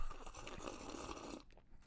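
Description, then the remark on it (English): A loud, drawn-out slurping sip of a drink, a rough, airy gurgle lasting over a second before cutting off abruptly. No one speaks. “The loud sip was for the audio listeners to know that I was actually legitimately taking a drink there.”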